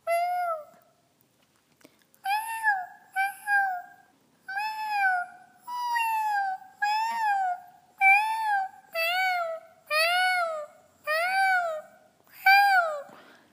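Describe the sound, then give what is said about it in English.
A voice imitates a very small kitten's mewing as a vocal exercise: about a dozen short, high, wavering mews repeated in a steady rhythm, thin and clear with brief pauses between, and no talking. “So you're creating the sound of a very, very small kitten.”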